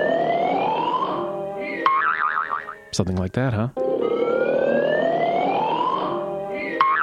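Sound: car alarm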